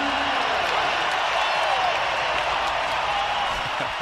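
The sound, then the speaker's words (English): A basketball arena crowd cheers and applauds after Dallin Hall's reverse layup gives the Cougars a 25-22 lead with 30 seconds to go, during a timeout called by Randy Bennett. A loud, steady roar holds without a break for about four seconds. No single voice stands out from the dense wash of noise. “Listen to this crowd.”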